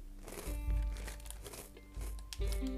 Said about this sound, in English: What a loud crunch. I won't crunch him anymore. It's like my favorite snack. I usually have it with my lunch, but everybody should try these. They're really good. They're like these like fried green bean snacks, and they're really flipping good.